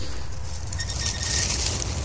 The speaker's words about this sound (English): Okay. The screech owl makes a high, then low call. You'll hear.